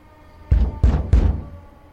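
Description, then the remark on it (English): Three heavy, evenly spaced knocks thud on a door, loud, with a deep booming resonance and no voices. “Coming! Coming! Open up in there!”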